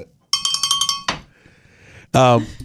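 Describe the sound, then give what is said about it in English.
A small bell rings rapidly, about eight quick bright metallic strikes in a steady rattle, then a short clatter, a quiet pause, and a loud burst of voice at the end. “They need me to use the bell.”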